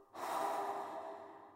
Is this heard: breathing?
yes